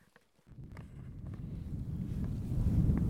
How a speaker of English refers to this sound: Hopefully it's not too windy for you. We've had lunch, and now we're hiking down to a forest.